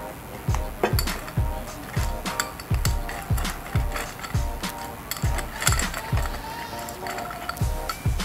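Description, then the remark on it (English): Large ice cubes clink and rattle against glass in a steady, repeated rhythm, with bright, sharp chinks over dull low knocks, continuing without pause for several seconds. “Okay, this ice is quite big. No, we don't really have ice in our glass.”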